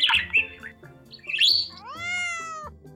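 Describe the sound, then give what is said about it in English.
A human voice imitates parakeet squawking: a couple of harsh, shrill chirping bursts, then a longer whiny squawk that bends downward, loud over a low steady backing. “I also speak parakeets. Why don't you like your new cage? The other birds are too loud.”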